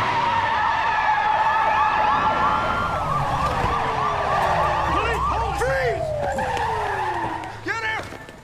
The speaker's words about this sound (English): That is a very serious car chase for the practice.